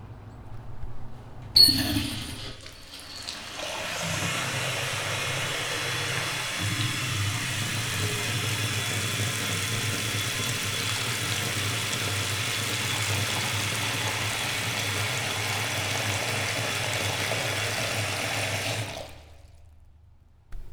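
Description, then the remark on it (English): A car engine drones low and steady while driving back to Hartford, Connecticut, beneath a dense, hissing roar of heavy rain pouring in sheets that holds for over fifteen seconds, then cuts off abruptly. No one speaks. “Driving back to Hartford, Connecticut, we entered and exited sheets of water as they poured from the sky.”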